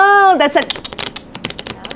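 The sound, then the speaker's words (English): A brief voiced sound opens, then a quick flurry of crisp flicks and snaps as a deck of playing cards is shuffled, rippling irregularly for over a second. “All right, that's a shuffle.”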